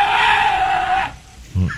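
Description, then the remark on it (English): A loud, harsh goat-like bleat sound effect, used as a stand-in for a badger sound, held for about a second, then a short lower bleating burst after a brief pause, with no voices. “Is that a goat? I think we don't have a badger sound effect.”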